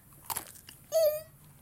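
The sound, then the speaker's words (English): A crisp crunch of someone biting into the head of a raw mushroom, a single sharp burst with faint chewing after, followed by a brief voiced hum. “Jeez, let's get some crunch on it.”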